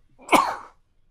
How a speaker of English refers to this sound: Excuse me. Bless you.